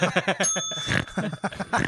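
A small bell, rung after a dumb joke, rings out with a sustained, shimmering metallic tone, while choppy bursts of laughter or voices run underneath, fairly loud.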